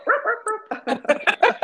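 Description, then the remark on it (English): A person imitates a dog, giving a quick run of yappy, barking sounds, about eight short bursts in a row, fairly loud with no other sounds around. “Oh no, I don't think we should bark.”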